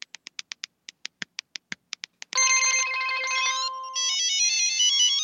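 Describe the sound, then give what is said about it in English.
A quick series of about a dozen short electronic beeps, then a loud, sustained melodic cell-phone ringtone jingle for an incoming text, with shifting tones, clear and with no talking. “That text was totally worth the 15 cents it cost to receive it.”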